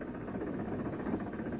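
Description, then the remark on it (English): A bus engine idles with a steady, low rumbling drone and faint vibration, holding an even loudness throughout without any voices. “I can't stop the bus. I've got to catch it.”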